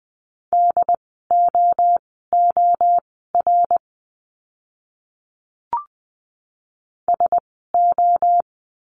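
Morse code beeps at a steady mid pitch spelling practice words at 20 words per minute in a lesson on the letter c, short and long pulses grouped into letters, a brisk run, then a pause broken by a single click before a shorter final burst.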